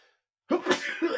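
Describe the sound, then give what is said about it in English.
A single sharp sneeze bursts out after a brief silence, loud and breathy with a trailing nasal release. “I need to sneeze.”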